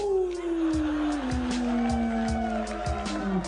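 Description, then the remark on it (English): A voice imitates a werewolf howl: one long, sustained wail that slides slowly downward in pitch and lifts slightly at the end, with steady rhythmic low thumps beneath it. “A windy werewolf.”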